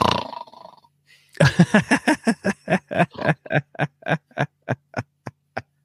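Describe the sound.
A voice mimics a booming superhero film score with a long run of loud, punchy vocal blasts that quicken into a steady pulsing rhythm, after a brief low murmur at the start.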